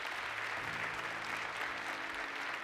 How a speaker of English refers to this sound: Give them a big hand clap right now. Come on.